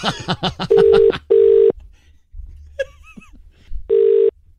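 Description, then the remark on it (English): A telephone ringback tone on an outgoing call made to pitch a product, a guinea pig-shaped espresso mug: a pair of steady, buzzy mid-pitched rings, a pause, then a third ring. A voice talks briefly before and between the rings. “Oh, we're calling.”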